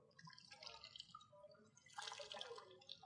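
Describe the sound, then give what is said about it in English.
Water is poured onto a sponge: it trickles and drips, a soft wet splashing that swells into a fuller, steadier pour partway through before easing off, with no one speaking. “If I pour water on this sponge, it will soak.”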